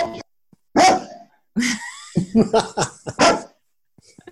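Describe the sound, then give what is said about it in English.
A dog barks in a quick, irregular run of sharp, loud yaps and whining yips, with short pauses between bursts and no talking. “I'm glad it wasn't my dog.”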